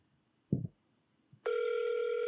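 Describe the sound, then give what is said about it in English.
A brief muffled thump, a short pause, then a loud, steady electronic phone ringing tone as a phone call is placed, starting abruptly and holding unbroken to the end, clear. “It's ringing. Can you guys hear the ring?”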